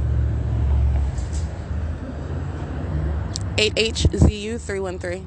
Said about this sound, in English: Looks like First Student is the name on this school bus crossing path.